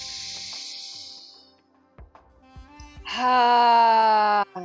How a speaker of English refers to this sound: Inhale, lengthen your breathing. The most important is that he can hear your breath. Open mouth breathing.